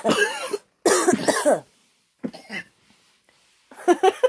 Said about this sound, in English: Almost coughed my eyes out.